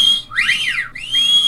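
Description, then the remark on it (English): Several loud wolf-whistles overlap from the lads down the front of a rowdy theatre audience as a courtesan character arrives on stage, sharp swooping up-and-down pitches layered in quick succession over a faint background murmur, with no clear talking. “The arrival on stage of the courtesan, played by the gorgeous, pouting Roger Starveling, triggered a predictably bawdy response from the lads down the front, with much wolf-whistling, lewd hand gestures and other equally tiresome ribaldry.”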